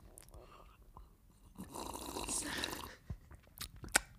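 Wet mouth noises: exaggerated lip smacking and chewing sounds, with a dense squelchy stretch in the middle and sharper smacks toward the end, no actual speech.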